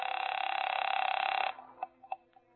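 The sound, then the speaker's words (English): A telephone rings loudly with a rapid, buzzing bell trill for about a second and a half, then cuts off, followed by a few short, quieter tones like a number being dialed, as a guest uses the phone after checking in at the Hotel Lee in Charleston at 8:30 p.m. “It was 8:30 p.m. by the time I checked in, and my first move was to the phone.”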